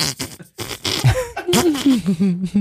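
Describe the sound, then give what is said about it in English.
A voice imitates a wet, moist, sputtering cabbage fart, a loud run of buzzy, bubbling bursts with wobbling pitch lasting a couple of seconds. “A cabbage fart has a lot more moisture to it. It's more like a...”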